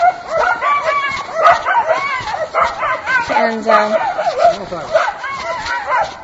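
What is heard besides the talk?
several dogs barking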